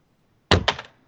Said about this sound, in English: What was that? She threw her phone down.